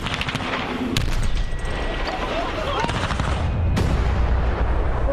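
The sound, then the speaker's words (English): A Tesla car in Finland blown up with high explosives: two sharp, powerful blasts, about three seconds apart, set within a continuous loud roar and crackle of debris. Muffled voices can be heard underneath. “There's nothing in this world that cannot be solved with the proper application of high explosives, man.”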